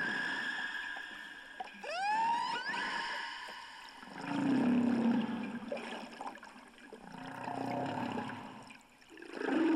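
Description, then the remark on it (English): Humpback whale song: a quick series of rising, whooping upsweeps followed by long, low groaning moans that swell and fade in slow waves over a hiss of underwater ambience. “The humpback whale may sing for hours, and then the songs are repeated again and again, pouring out across the blue expanses of the sea.”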